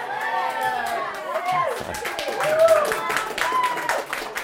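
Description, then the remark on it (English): A crowd claps steadily while several voices whoop and cheer in rising, wavering shouts, the applause growing a bit louder and busier toward the middle before continuing at a lively pace. “I have to warn you, you clap, you cheer, you say I'm ready for it.”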